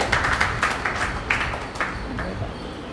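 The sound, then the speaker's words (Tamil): An audience claps together, a dense patter of handclaps with sharper bursts standing out now and then, holding at moderate loudness and thinning slightly toward the end. “கை தட்டுங்கள்.”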